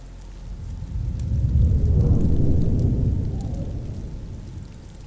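Steady rain hisses throughout while a deep, low rumble of thunder swells in the middle and slowly fades, with no voices present.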